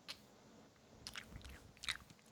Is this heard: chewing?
yes